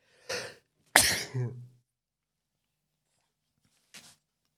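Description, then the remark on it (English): A forceful sneeze bursts out after a sharp intake of breath, trailing off into a short vocal tail, followed by a faint sniff or small exhale a few seconds later. No speech. “Excuse me, I had a sneeze there.”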